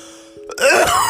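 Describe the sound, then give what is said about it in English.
A single loud throat-clearing rasp, rough and gravelly, bursts out after a brief quiet moment and carries on harshly to the end, with no talking. “I mean, it's raining coughs and fucks, you know?”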